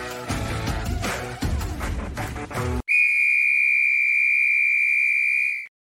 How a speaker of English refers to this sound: There's the whistle. That means it's time to get going here.